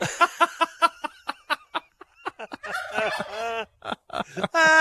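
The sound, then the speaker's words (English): A hen clucks in a quick, steady run of short clucks, then breaks into louder, drawn-out squawking calls, with no talking. “probably would qualify as a light hen.”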